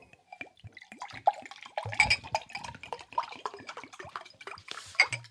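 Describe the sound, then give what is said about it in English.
Water drips and splashes steadily for several seconds, a busy patter of small droplets with occasional louder splashes, with no voices. “All right, that water sounded nice.”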